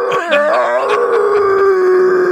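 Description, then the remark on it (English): A voice imitates a long, drawn-out moan, loud and wavering at first before settling into a steady tone that slowly sinks in pitch, almost like a howl. “It's actually moaning.”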